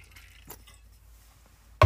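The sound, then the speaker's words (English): Someone taking a drink of water: a soft glassy clink, a stretch of quiet handling, then a sudden louder knock as the glass is set down at the end. No one speaks. “Sorry, drink of water.”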